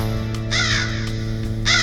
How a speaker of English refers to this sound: For when the crow caws thrice, a terrible darkness.